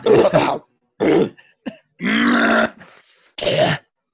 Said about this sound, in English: Does anyone else need to clear their throat before we begin? No, I feel like I do, but...